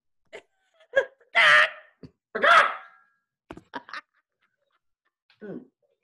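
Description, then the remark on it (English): A chicken clucks: a few short, sharp clucks, two longer squawking calls, then scattered clucks and a final low cluck, with quiet gaps between and no talking. “Maybe I can get the chicken to contribute.”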